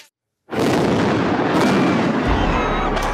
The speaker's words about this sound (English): Explosions rocking the Belarusian capital a few hours after polls have closed. Riot police is blocking the entrance to a large square and is firing stun grenades into the crowd.